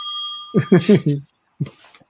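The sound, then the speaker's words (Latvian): A small bell rings once with a bright, sustained metallic tone that lingers for about a second, while a voice talks over it and continues briefly after. “Zvaniņš.”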